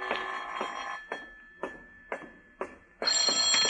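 household object, telephone bell ringing

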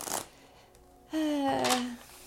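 household object, shuffling tarot cards

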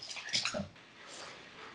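animal, dogs barking and whimpering

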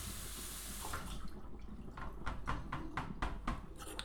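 household object, running water

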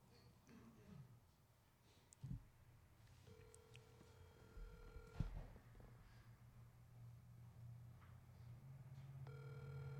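signal or alarm, phone call ringing

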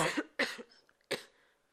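human body sound, cough

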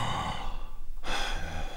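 human body sound, sharp gasp

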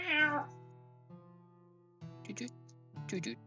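animal, cat purring and meowing

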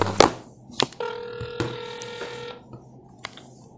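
signal or alarm, outgoing phone call ringing

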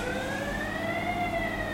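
signal or alarm, air raid warning siren

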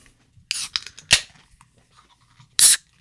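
food or drink, beer can cracking open

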